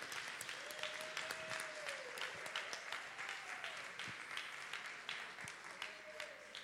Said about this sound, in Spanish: Cuando están llegando los hermanos, dar un aplauso a todos los hermanos, los padres que están viniendo, por favor.